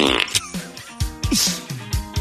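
A rapid string of electronic fart sound effects from a fart box, several short, buzzy, low blasts with wobbling pitch following one another in an uneven rhythm, fairly loud, with no talking.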